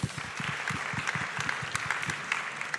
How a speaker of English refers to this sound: All right, thank you so much, gents. Can I have a big round of applause?